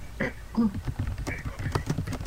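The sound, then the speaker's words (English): Rapid, irregular clicks of fingers typing on a computer keyboard, fairly loud, with a muffled murmuring voice briefly underneath from the typist, who holds a pen in their mouth. “I've stuck my pen in my mouth while I was typing something.”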